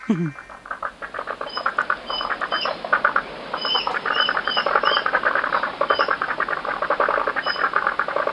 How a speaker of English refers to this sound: Robin Russell said, this is the happy sound of frogs after the first big rain of 6 months in my 2 metre square suburban pond. This is Robin from Mollymook in New South Wales. Sounds like a chorus of striped marsh frogs. Limnodynastes perennae to me.